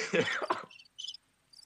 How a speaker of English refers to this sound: What's going on in there? Oh, apparently there's crickets in his apartment as well.